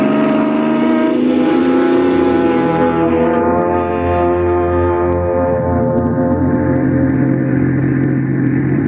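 A car engine drones loudly and steadily as the car pulls away to set off on vacation, its tone dipping lower partway through and then holding a continuous, rumbling hum. No one speaks.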